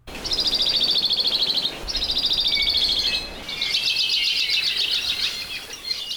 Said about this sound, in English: Today on our Manu Minute, the University of Hawaii biology professor, Patrick Hart, brings us the song of the modest Hawaii creeper. This little bird is hard to spot, but today we hear its call as well as its recently discovered Hawaiian name.